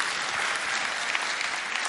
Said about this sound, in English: Give Charles a round of applause, will you?